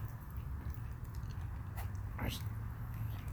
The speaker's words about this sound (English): Was that sound from the dog? Yeah. She looks like she's looking for something, though.